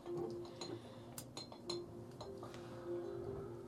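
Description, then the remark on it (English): A glass straw clinks against the inside of a glass jar in a string of light, irregular taps, fairly quiet, each leaving a faint ringing tone, played as an ASMR demonstration. No one speaks. “It is a glass straw in a glass jar.”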